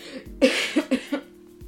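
A fairly loud fit of coughing: one harsh cough followed quickly by three shorter, raspy coughs in an uneven rhythm, with no talking.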